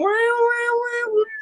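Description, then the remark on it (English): A voice imitates a country steel guitar's meowing slide: one drawn-out, whiny, nasal tone lasting over a second, bending slightly and dipping near the end, fairly loud. “and the thing I never got about country, but I just loved it, the meowing guitars.”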